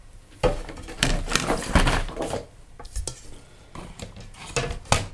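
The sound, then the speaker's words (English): Handling noises as another sheet of photographic paper is set into an enlarger easel: a few sharp metallic clacks and soft scraping shuffles over several seconds, with no one speaking. “So we'll put another bit of paper there.”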